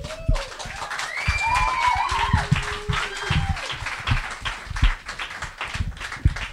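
Steady applause from an audience, dense rapid clapping that holds at a fairly loud level for several seconds, with a few whoops and cheers rising over it.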